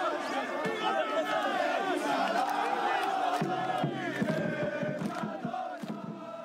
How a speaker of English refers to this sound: In fact, here is Ben-Gvir in the middle of a crowd of singing Beitar fans on video, arm in arm.